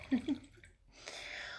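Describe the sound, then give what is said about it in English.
A short vocal murmur, a brief pause, then a steady trickle of wine poured into a glass, continuing to the end. “I mean, but I sense we need to pour some more wine.”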